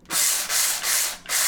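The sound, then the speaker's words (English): Long-grain white rice being ground in a couple of pulses in a small electric spice mill, also called a coffee grinder: four loud, gritty, hissing bursts in quick succession, each a rough rasping whir separated by brief dips, with no voices. “And what I'm going to do is put it in a spice mill for a second.”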